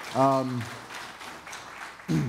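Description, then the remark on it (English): Steady applause from an audience for their pastor, a dense crackle of many hands clapping that fills most of the moment, with a brief voiced sound at the start and a voice returning at the end. “Let's give your pastor a round of applause for being such a fantastic leader.”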